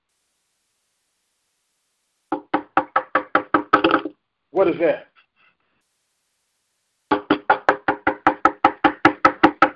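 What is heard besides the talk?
knocking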